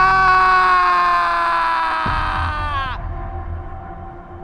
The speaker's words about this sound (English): And as the face changes into some unspeakable horror, all he can hear are his screams of sheer panic.